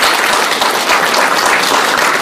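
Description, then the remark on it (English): A crowd applauds loudly and steadily, a dense wash of many hands clapping at once with no pauses and no voices breaking through. “How many of you, by applause, would love to know God's will for your life in 2017?”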